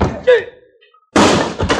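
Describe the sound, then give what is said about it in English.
A short vocal grunt is followed, after a brief pause, by a loud, heavy crashing blow as a man is knocked down with a chair, and a second thud as his body hits the floor. “You knocked him down with the chair.”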